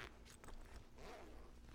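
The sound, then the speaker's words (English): Quick ripping zips of pants zippers being unzipped, a few short raspy strokes in a row, fairly quiet with no talking. The pants unzip completely. “Well, let me get the rest of the zippers real quick.”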